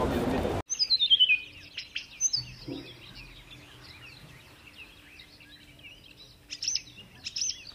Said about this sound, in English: I know it's poor form to record audio in a toilet, but Helsinki Airport lavatories play birdsong, which I think is kind of lovely, so I thought I'd share it with you